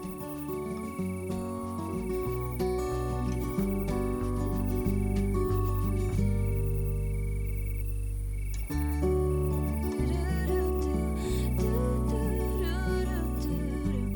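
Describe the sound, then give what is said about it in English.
A steady chorus of crickets chirping on a night, their trilling unbroken for the whole stretch, layered over a deep, humming tonal drone with no voices. “Then I slip away to my bedroom, pull out another Joanne Harris novel, crack the window so that the crickets can sing me to sleep, and keep dreaming about how I might do it better too.”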